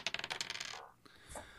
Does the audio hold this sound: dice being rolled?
yes